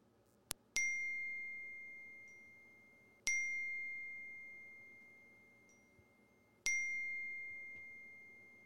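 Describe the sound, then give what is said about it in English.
A bright electronic chime rings three times at steady intervals, each tone sharp at the start and then ringing out slowly, a phone signalling an incoming call, over a faint low hum. “Adam just called. Somebody, Adam. I'm going to pick up this phone call.”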